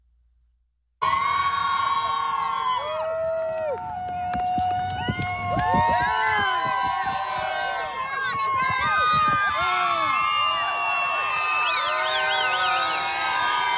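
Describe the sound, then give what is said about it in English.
A large rally crowd in Detroit roars loudly as Trump arrives with his motorcade, with many voices shouting and cheering at once in overlapping rising and falling calls. It bursts in after a brief moment of quiet and stays dense throughout. “Massive crowds, massive energy.”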